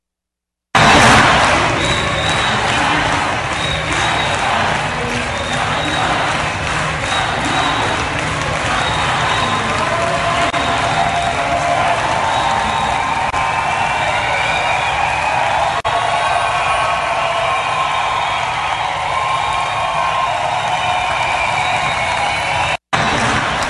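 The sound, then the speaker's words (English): A large crowd roars steadily with cheering and applause, a dense, loud wash of voices that holds for the whole stretch, with some rising shouts or chant-like tones emerging partway through. “Big, big crowd right there.”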